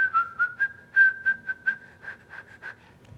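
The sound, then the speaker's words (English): A tuneless whistle hovers on nearly one pitch for about three seconds, broken into breathy, rhythmic puffs rather than any melody, with no talking. “And I say, I like when they whistle a tune. Not just...”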